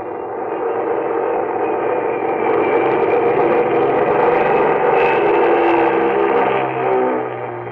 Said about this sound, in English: It was 9:45 on the dot as the big mainliner slowly circled down out of the clear starlit sky.